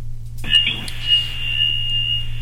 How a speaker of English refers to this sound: oh shoot, got a phone call. Another phone call today. This is awesome.